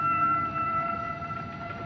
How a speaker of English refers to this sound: So begins the book Eye of the Whale. In it, the humpback whale song has changed suddenly, but why?